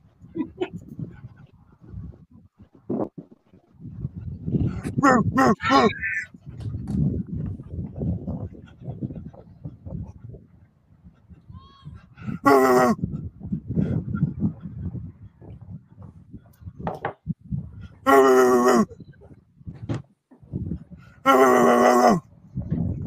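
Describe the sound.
A man imitates a dog, first with low grunting, panting noises, then three loud, strained, yelping bark-like cries spaced a few seconds apart.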